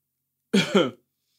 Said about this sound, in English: Why you coughing? You okay?